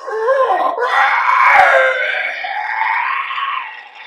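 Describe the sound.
A voice imitates a monster's agonized screech as its eye, struck by a fist, rots and decays away: one sustained, strained, wavering cry lasting about four seconds, loud, with no talking.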